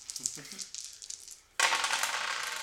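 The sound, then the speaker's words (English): Dice clatter with a few sharp clicks and taps, then a louder, steady rattling clatter takes over for the last second, with a brief voice sound early on; the roll comes up five. “Fuck you, dice.”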